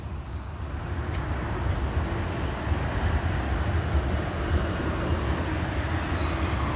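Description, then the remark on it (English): A steady, loud engine roar from an airplane passing overhead, a broad continuous rumble heavy in the low end that holds level throughout with no voices. “Alrighty, complimentary audible activity of the plane.”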